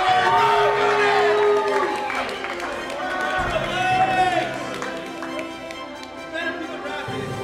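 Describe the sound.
A large crowd applauds and cheers loudly and steadily, with dense clapping under rising whoops and shouting voices that swell and hold for the whole stretch.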